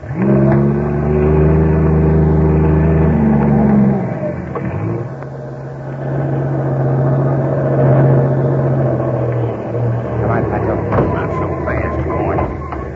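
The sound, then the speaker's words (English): A heavy trailer truck engine roars steadily as it labors up a steep highway at night, loud, its deep drone dropping in pitch partway through as if shifting gears, then droning on. “Suddenly, the silence of the night is broken by the roar of a trailer truck climbing the steep highway.”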